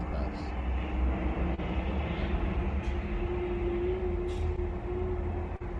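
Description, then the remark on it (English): Steady New York City background noise: a continuous low rumble like a passing train or subway, with a sustained mid-pitched hum running throughout and faint murmuring voices underneath. “Alright, y'all, so you know we in New York, so we got to get deal with the New York background noises.”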